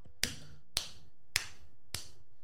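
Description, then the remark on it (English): Four sharp hand claps in a slow, even rhythm, crisp, with the last one slightly softer. Quiet in between, with no talking. “We got to clap.”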